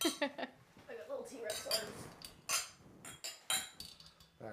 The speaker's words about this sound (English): So if you want to get a sip, go for it. Are we cheersing? Cheers. Sure.